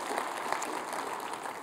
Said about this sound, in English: If you're excited about what God's doing at Parkway, would you give the Lord a big round of applause?